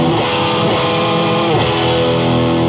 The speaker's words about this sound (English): Before we start getting some colors going, how about you hit us with just what we're hearing in the hi-wat? That's like the bass tone, which is just a little clean spring reverb and a tiny bit of tape delay. Okay. That's pretty much it.